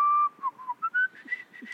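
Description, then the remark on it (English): Someone whistles a short, bright little melody like a chime from the video game Fallout, a series of clear pure tones stepping upward in pitch, fairly soft, with no talking over it. “Something that stuck with me from Fallout was, like, a little chime of, like, someone whistling.”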